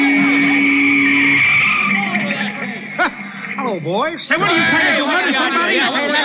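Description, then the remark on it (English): A car skids noisily to a stop on a field amid a jumble of excited shouting voices, with a steady engine or horn tone at the start and loud, overlapping calls throughout. “Hey, get that car out of here, will you? Get off the field, you bonehead.”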